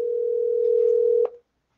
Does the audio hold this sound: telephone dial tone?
yes